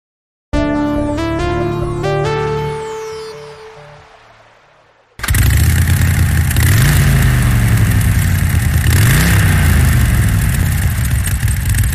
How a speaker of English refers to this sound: Sorry I'm yelling so loud, but this motorcycle, I don't know what they put in these engines. It's so loud.